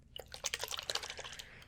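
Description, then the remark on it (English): A spray bottle spritzing in a quick, uneven run of short, hissy bursts with faint clicks, fairly quiet and high-pitched, with no voices. “Spray bottle.”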